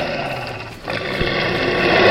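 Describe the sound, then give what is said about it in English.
A giant wolf, Fenrir, lets out a deep, sustained, loud roar, swelling in intensity toward the end with no speech over it. “Wolf! The Gigantian Wolf!”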